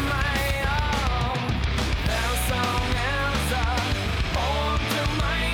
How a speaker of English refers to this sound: So like, it has really bad screaming. It has like weird vocals, I guess. And it has an overactive bass player for what the song is. It's like that bass player is playing circles around the band,